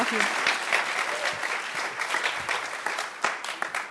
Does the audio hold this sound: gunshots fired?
no